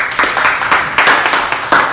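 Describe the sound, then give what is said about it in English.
A short burst of group clapping for a person, steady and fairly loud, with overlapping claps from several people, no voices standing out. “Let's clap”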